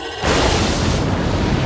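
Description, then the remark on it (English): A sci-fi spaceship explosion erupts suddenly after a brief hush, its loud blast spreading into a dense, sustained roar of rumbling noise with no one speaking. “Target that explosion and fire.”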